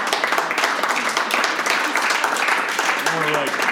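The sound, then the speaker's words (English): Steady applause from a crowd for Joe Biden for President of the United States, a dense wash of many hands clapping at even loudness throughout, with murmuring voices and a brief cheer mixed in near the end. “Joe Biden for President of the United States. Please clap.”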